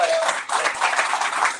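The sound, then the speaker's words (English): A crowd breaks into a steady, dense round of applause, many hands clapping together at a fairly even loudness for under two seconds. “Give Jim Crowley a round of applause.”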